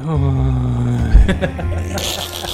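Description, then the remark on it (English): Exaggerated, heavy breathing right up against a microphone: a couple of drawn-out, buzzy, partly voiced breaths, loud, with a breathy hiss at the end. “Heavy breathing. I can hear it's heavy internet breathing.”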